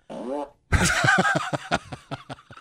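A fart machine sound effect: a short buzzy blat, a brief pause, then a long raspy, wet burst that breaks into a string of sputtering pops, fairly loud.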